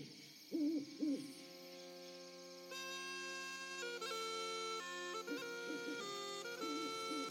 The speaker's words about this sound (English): You hurry out into the blackness of the forest night, amid the chirruping of the insects and the far-off hoots of the owls.